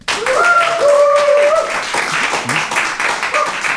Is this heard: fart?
no